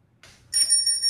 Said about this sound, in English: Annoying beep. Yeah. Yeah, it should be an annoying beep. It's very annoying. Yeah. I think that's one of the things that we found out when we put this in. And we plugged it in. It was like just a non-stop annoying beep.